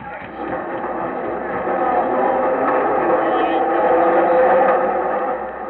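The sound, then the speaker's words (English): A subway train pulls out of the station with a steady, dense rumbling roar that grows gradually louder toward the end, then eases slightly. No one speaks over it. “We better catch him before that train pulls out.”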